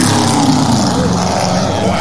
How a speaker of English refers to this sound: Oh, that motorcycle.